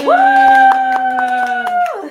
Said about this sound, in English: I'm really excited. Hand clap.